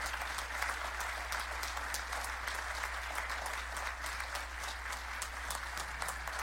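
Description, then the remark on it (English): A standing audience at St. Paul Church applauds two members for their years of service, a dense wash of many hands clapping at an even level for several seconds, with no speech over it. “Can you all just stand on your feet and applaud them for their years of service to the St. Paul Church?”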